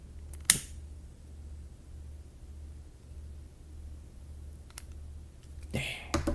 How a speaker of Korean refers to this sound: 네, 순수한 올리브유 한번 불을 붙여보도록 하겠습니다. 이렇게 한번 심지를 꺼내 보고요. 기름을 먹은 것 같아요. 자, 그리고 라이터로 한번 불을 붙여보겠습니다.